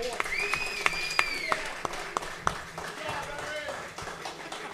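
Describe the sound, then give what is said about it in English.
Scattered audience applause for a woman being invited up: a series of sharp, uneven claps over a steady crowd murmur, with a few raised voices whooping and calling out. “I want to hear some applause.”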